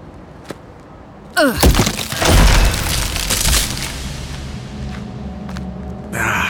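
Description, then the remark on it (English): A non-electronic door is forced open: a sudden loud crack and splintering burst, followed by a couple of heavy crashing impacts and scraping, then fading rumble and a brief noisy rush at the end. “So get that door open.”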